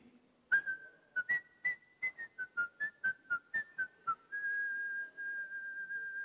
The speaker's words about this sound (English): Come up with a whistle. I've got my sheep. The Bible says, the shepherd will call and the sheep will follow them.